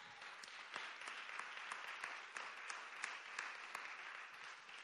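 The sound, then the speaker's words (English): An audience claps steadily, many hands blending into a dense, even patter that holds at a moderate level for several seconds, with a few sharper individual claps standing out. “We ought to clap our hands to that.”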